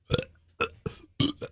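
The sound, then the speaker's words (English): A quick series of five short, croaky burps, fairly loud, pushed out one after another in a choppy rhythm as if being forced deliberately. “You can actually, it sounds like you're trying to force a burp, but really you can actually start to puke if you really wanted to.”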